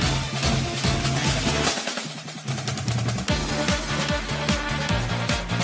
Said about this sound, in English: Sounds like this actual band playing the music. Well, that's what the Smash Brothers games do. They use like orchestras to recreate all of these classic themes.